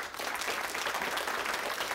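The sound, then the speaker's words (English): An audience at a high school play, a production of Grease, claps steadily, a dense wash of many hands at a fairly even level with no voices standing out, the applause continuing for the whole two seconds. “Maria, this next round of applause is for you.”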